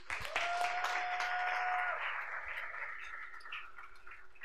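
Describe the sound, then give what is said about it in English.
An audience claps in a dense, steady burst that starts loud and slowly tapers, with a sustained tone humming briefly through the first two seconds. “Clap for them.”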